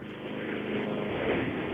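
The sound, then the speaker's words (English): A steady, continuous engine drone of an airplane in flight, heard through a narrow phone line from a caller to the radio call-in show Let's Talk Gardening, cutting off the high end; a constant, moderately loud roar with no voices. “sounds like he's in an airplane.”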